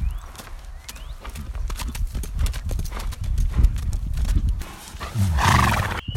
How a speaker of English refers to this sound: Horses.